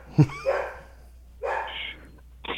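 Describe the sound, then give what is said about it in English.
A dog barks a few times in the background, spaced-out yelping barks after a sharp thump, fairly faint and with no talking over them. “The dogs can't wait to hear from you. Can you hear? Yeah, I can hear them in the background.”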